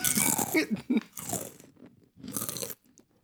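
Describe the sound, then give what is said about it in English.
Loud crunching of potato chips being bitten and chewed, a few sharp bursts of crackling in quick succession with a brief pause, no talking. “This episode is also sponsored by the crunch of my chips.”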